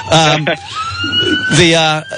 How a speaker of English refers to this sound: But on the other hand, here comes an ambulance